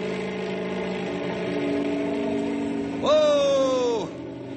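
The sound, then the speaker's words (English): A helicopter engine hums steadily, then revs sharply upward for about a second, a whining surge of rising pitch that drops off abruptly, as the pilot revs it up for stability and takes the helicopter straight up. “I'll take the copter straight up.”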